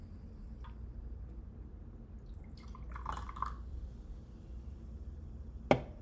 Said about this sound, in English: I'm just going to pour them into these little cups.